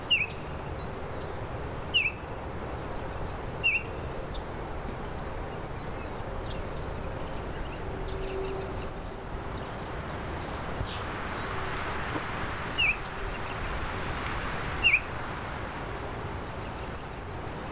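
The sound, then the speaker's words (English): A Baltimore oriole sings short, clear whistled phrases every couple of seconds, with red-winged blackbirds calling alongside over a steady, rushing background hiss. “Red-winged blackbirds, and this Baltimore oriole still singing.”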